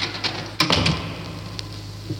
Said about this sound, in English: I hear someone coming. Help me close the door, Captain. It is very heavy.